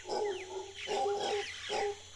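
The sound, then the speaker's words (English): Deep, drawn-out roars from a family of howler monkeys rise and fall in three long bursts, loud and carrying through the forest, with faint chirps and rustling behind them. “Still working overhead in the Arisma, he's encountered a family of howler monkeys.”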